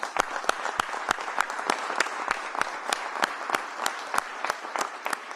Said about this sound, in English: I want to give y'all a round of applause.